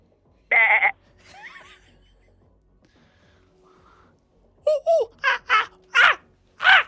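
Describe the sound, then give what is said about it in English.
A person imitates a monkey: one sharp, loud screech, a pause, then a rapid series of five or six high, harmonic whooping cries. “Monkey.”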